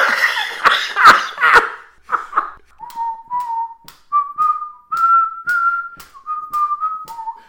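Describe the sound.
A wolf whistle turned into the whistled tune of a rock song, steady, sustained notes stepping up and down, preceded by a few seconds of breathy laughter and coughing bursts, fairly loud.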